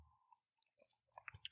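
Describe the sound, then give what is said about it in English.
Soft mouth sounds of someone sipping a margarita: a brief quiet slurp, then a short cluster of wet lip and swallowing noises near the end. No talking. “We taking a sip of our margaritas.”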